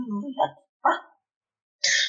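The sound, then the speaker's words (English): A person mimics a puppy barking with their voice: a couple of short, high yaps followed by a breathy, hissy burst, alone with brief gaps between. “Okay, I'll pick the puppy back up. He licks your face again.”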